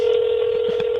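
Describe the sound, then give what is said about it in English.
A telephone dialing tone, heard as a call is placed to the speaker's mom, sounds as one steady, unbroken electronic beep, loud and mid-pitched, holding for about a second with no voices over it. “I am dialing.”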